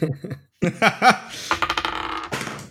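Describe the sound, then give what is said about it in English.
Brief vocal sounds give way to a rapid run of small hard clicks and clatters as dice are rolled for initiative across a table, then settling after about a second. “Oh my god, I am not good at rolling dice.”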